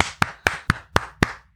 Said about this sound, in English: Those triple clap edit points are neat. I learned that from listening to podcasts.